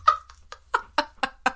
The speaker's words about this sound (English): The birds have decided to start screaming outside of Nick's window.